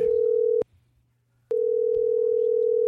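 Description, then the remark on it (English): A phone line rings through as a crank call is placed: a steady electronic tone sounds, breaks off for about a second, then returns and holds. Loud, with a faint low hum underneath and no talking. “don't make a crank phone call.”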